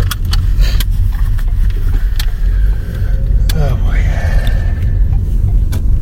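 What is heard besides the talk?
car running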